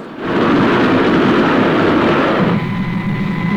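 A loud, sustained roar of a train rushing through a railway tunnel, from London to Brighton footage used in the show Supercar. The dense rumbling noise holds steady, then shifts slightly in tone near the end, with no voices.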